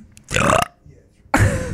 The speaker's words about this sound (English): No, like people get sick listening to the intro when it's you burping.